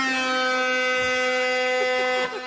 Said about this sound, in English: Kind of a fat guy air horn.